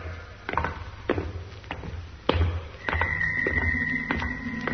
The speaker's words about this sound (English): It's the door. It's closing again.